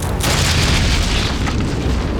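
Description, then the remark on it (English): A wooden bridge collapses under a person crossing it, its wooden slats falling, in a loud, sustained crash, a deep booming rumble with rough crackling texture that holds steady for about two seconds. No voices are heard. “Ninigi let out a whoop of joy, just as the bridge collapsed under him.”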